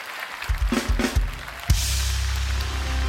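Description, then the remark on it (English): A few sharp thumps give way to a steady wash of crowd clapping, a round of applause for the pastor by the Good Hope audience, sustained over a low droning tone that continues underneath to the end. “So, Good Hope, let's give our pastor a round of applause.”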